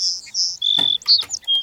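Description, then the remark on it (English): A sparrow chirps in a quick run of high, thin notes and short trills, a few brief calls spaced over under two seconds, set back at a distance with no talking. “Oh, here's the sparrow. He'll be off in the distance.”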